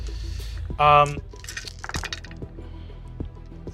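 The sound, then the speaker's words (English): Many dice being rolled, clattering, clinking and tumbling together, a rapid scatter of clicks over several seconds, with a brief bright tone and faint background voices. “So many dice.”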